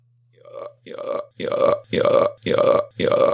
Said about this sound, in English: That's actually a kind of and sounds more like a normal burp than usual. It's like that.